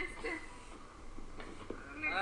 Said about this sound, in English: I can't believe that's what a zebra makes as a noise.